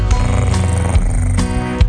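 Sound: cat purring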